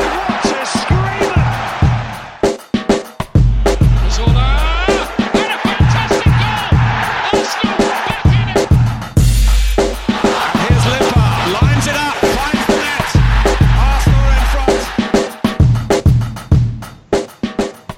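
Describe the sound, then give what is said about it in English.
A large football crowd at the Emirates chants loudly in unison after an Arsenal victory over West Ham, cheering the manager's name, voices rising and falling over rhythmic low thumps of clapping or drumming, with cheers and shouts swelling throughout. “the crowd lustily cheered his name and begged for him to stay”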